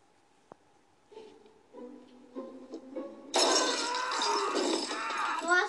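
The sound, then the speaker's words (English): Glass baubles breaking: a few light clinks and tinkles build up, then a loud, sustained shattering crash of many glass pieces that rattles on for a couple of seconds, bright. “The glass baubles?”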